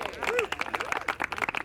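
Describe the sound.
A small group applauds with dense, irregular clapping that continues steadily throughout, moderately loud and fairly close, with a few voices calling out or cheering over the claps.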